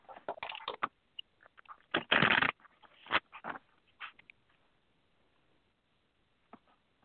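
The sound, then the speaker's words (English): Cards being shuffled: a run of quick papery snaps and rustles, one dense riffling burst in the middle, then a few scattered taps fading to near silence. “Just shuffling.”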